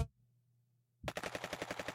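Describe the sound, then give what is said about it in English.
After about a second of near silence with a low hum, a rapid burst of automatic gunfire erupts as a sound effect played by mistake as the wrong sound bite, loud, evenly spaced shots rattling in quick succession until the end. “I was going to do the intro, and I hit the wrong sound bite, and it was gunfire.”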